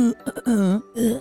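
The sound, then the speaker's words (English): A person vocally imitates a dog from a TikTok video, like a little pit bull, trying to hold back a stifled, hacking cough. It comes in short strained bursts: a clipped sputter followed by a longer wavering groan and one more choked push, fairly loud. “And it was like what it's like trying to hold a cough back in public.”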